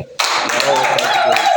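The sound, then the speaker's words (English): An audience breaks into loud, sustained clapping after a brief quiet moment, many hands blending into a dense wash of applause, with some voices calling out underneath. “You're all welcome to 2023. I taught you, clap.”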